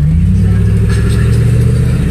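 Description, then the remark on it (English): A big truck engine rumbles loudly, a deep steady drone with a slight mechanical clatter that holds for the whole moment, with no one speaking. “Oh, I got a big truck.”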